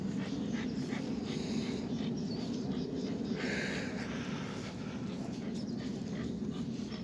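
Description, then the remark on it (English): A dog named Joe pants rapidly and steadily for several seconds while walking on soft, wet grass, a continuous breathy rhythm with soft rustling underneath and no one speaking. “Let's just keep walking on this soft grass that's wet and feels good on your paws.”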